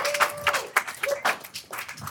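A short burst of applause: dense, irregular clapping from a small group, with a faint whistle-like tone threading through the first half before the claps fade out.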